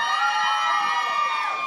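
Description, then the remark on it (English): A woman in the audience lets out a loud, sustained, high-pitched "woooo" whoop that holds steady for under two seconds, with a faint crowd murmur underneath. “You just wanted to be a woo girl for 2 seconds, and I respect it.”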